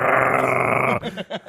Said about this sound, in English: Yeah, but the really funny scene is after that when he's in her house and, like, her dog is not having it, dude. Growling. His hand goes down.